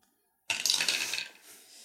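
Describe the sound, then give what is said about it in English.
Dice rattle and clatter across a hard table in a short, bright burst of clicking after a moment of silence, then settle quickly into a faint tail. The dice are being rolled for a perception check in a game. No voices. “This is the dice, man, I'm telling you.”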